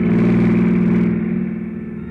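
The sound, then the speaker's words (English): A long, yellow convertible car, driven by Miss Adrian Granville alone, approaches fast with its headlights sweeping; its engine roars with a steady, low, droning hum, loud throughout with layered tones, its hiss dropping away midway and the volume easing slightly toward the end. No voices. “When the sudden splash of a pair of headlights sweeping my way fast sent me sprawling for cover without so much as a reason why.”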